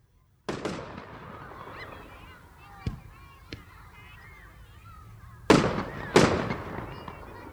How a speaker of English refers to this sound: These fireworks change colour as they speed up into the distance, then explode with a loud bang of pure heavy metal that the whole neighbourhood can hear.